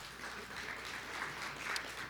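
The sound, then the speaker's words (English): An audience claps steadily, giving another round of applause for a visiting man, a dense wash of many hands at a moderate, even level throughout, with one slightly sharper burst near the end. “He and I share, you can give him another clap.”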